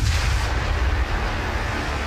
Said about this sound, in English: The Big Bang. The birth of time itself. Chaos and beauty.